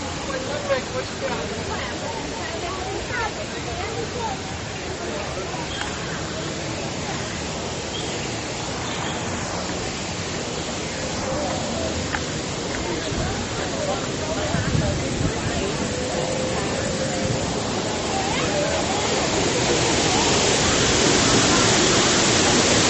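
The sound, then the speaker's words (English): A rushing waterfall roars steadily, a dense, unbroken wash of white noise that swells slightly louder toward the end, with no talking over it. “Right at the waterfall. It's just beautiful.”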